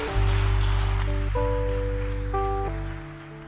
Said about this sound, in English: UFF, we can do it better. You can clap. Clap for them.